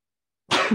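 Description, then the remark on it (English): A single sharp sneeze bursts out after a moment of silence, fairly loud, with a brief throaty tail as it fades. “Sorry. Bless you.”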